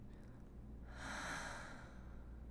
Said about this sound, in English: And let's breathe nice and easy in through our nose. Little hold. Nice and gentle.